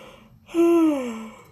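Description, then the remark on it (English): A single drawn-out voiced yawn, sliding slowly downward in pitch and trailing off over about a second, with no talking around it. “This is Yolanda and Tommy Watson, and … explains with a yawn.”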